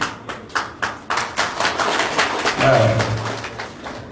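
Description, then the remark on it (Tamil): An audience claps in a steady rhythm at first, then the claps thicken into a dense round of applause that carries on throughout with no talking. “அதே ஒண்ணு சொல்லிக்கிறேன், நம்முடைய சமூகத்தில் எதுக்கு எடுத்தாலும் கையை தட்டுவோம்.”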